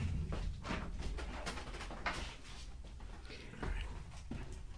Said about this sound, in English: Wait a minute. So it turns out, I just want to crack the door. It is sweltering in here.